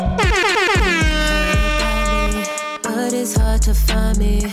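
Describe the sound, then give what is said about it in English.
Loud, blaring air horn blasts from a DJ fire in rapid succession, a DJ-style barrage of repeated honks with a brief pause midway before the horns resume. No one speaks. “I want to say shout out to … one time for the air horns, baby.”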